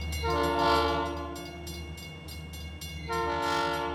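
A loud train horn blares in two long, steady blasts with a brief gap between them, over the low rumble of a rolling train.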